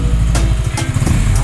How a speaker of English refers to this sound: Okay, so motorcycle goes.